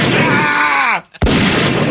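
A steady, buzzing tone slides downward and cuts off, then after a brief hush a sudden loud shotgun blast bursts out, followed by a rough, noisy roar that carries on to the end.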